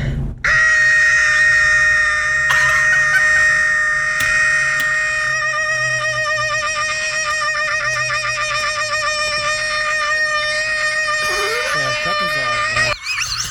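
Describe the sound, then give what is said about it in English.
A man in a food review video screams loudly and continuously for over ten seconds in excitement over a McDonald's burger he is about to eat, a sustained, strained high-pitched yell that wavers and breaks near the end before cutting off abruptly. “Why you just started screaming off rip?”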